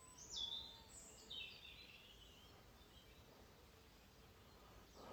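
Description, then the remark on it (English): Faint birdsong outdoors at the start of the Cumbria Way in Ulverston, with sheep about, on a lovely Sunday morning around sunrise: a couple of brief bursts of high chirping and trills early on, then quiet open-air background hiss with no one talking. “So doing a bit of this, but just hopefully you can hear this bird song above the sheep.”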